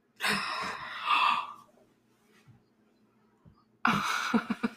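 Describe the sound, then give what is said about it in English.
A sharp, loud gasp rushes in, followed by a stretch of near silence, then a second breathy gasp bursts in at the very end. “I gasped because you actually had the balls to say it.”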